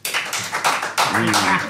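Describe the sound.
A studio audience votes by applause for the film pairing Kung Fu Panda versus The Fly: a short burst of dense, crackling clapping from many hands, with a voice briefly calling out over it toward the end.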